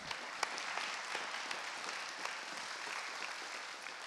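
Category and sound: crowd, audience round of applause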